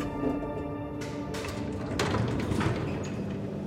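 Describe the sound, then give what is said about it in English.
A steady mechanical hum gives way to a soft rumbling slide as elevator doors glide open, with a couple of muffled thumps and no voices. “The elevator doors open, and Welch spots the man he's supposed to meet.”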